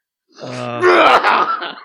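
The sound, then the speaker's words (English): A single loud sneeze from someone who has just snorted cocaine, spraying it over the floor: a drawn-out, rising voiced intake builds for half a second, then breaks into a harsh, noisy burst that trails off in a breathy exhale. “Oh, you've sneezed cocaine all over my floor?”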